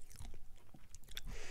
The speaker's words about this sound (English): Like it's a peanut, little tapping? It's peanut M&Ms. Oh, okay. They're way too crunchy.